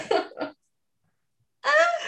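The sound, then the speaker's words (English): Two quick, rough cough bursts, then a short silence before a strained, voiced throat-clearing sound follows. “Oh my God, you have me coughing.”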